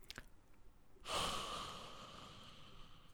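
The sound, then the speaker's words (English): After a brief quiet pause, a single voice lets out a long, breathy, hissing roar imitating a cheering crowd, swelling suddenly and then slowly fading over a couple of seconds. “No, it's the crowd cheering.”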